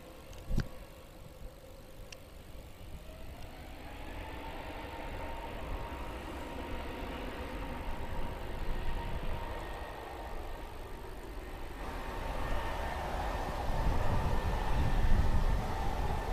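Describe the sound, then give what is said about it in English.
A steady engine drone from an A321 airliner taxiing down the runway just before takeoff, under blue skies and sunshine, rumbles continuously, slowly building in loudness with a rising whine, with no voices present. “So let's let you hear the sound of those engines.”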